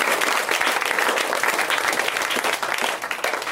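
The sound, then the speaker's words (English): A crowd bursts into sustained applause, dense overlapping claps filling the room at a steady, loud level for several seconds with no speech over it. “And you should all be clapping for this.”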